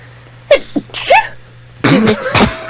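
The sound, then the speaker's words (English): A quick series of loud sneezes, each with a sharp breathy burst, coming in two clusters a moment apart with short gasps in between and no talking. “Don't even get started on my sneezes.”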